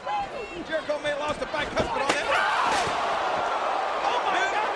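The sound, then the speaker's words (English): A sharp, loud crack of a steel chair shot in a wrestling match rings out over a roaring arena crowd, with a couple of smaller impacts and commentators talking throughout. “and the crack is just so loud. Talk about concussions and chair shots.”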